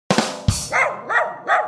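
A dog barks several times in quick succession, close and fairly loud, a couple of sharp yaps followed by three higher, whining barks, with no one talking.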